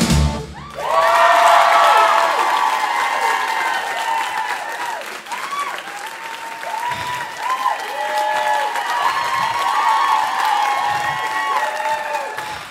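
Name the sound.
audience applause and cheering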